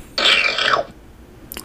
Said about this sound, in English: Hold on, there's one on here called Slurp. That's the name of the sound effect.